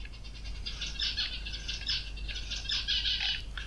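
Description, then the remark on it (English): A pet bird chirps and twitters continuously in quick, high-pitched bursts, fairly quiet, over a low steady background hum with no one speaking. “Is that your bird just laughing about that situation then,”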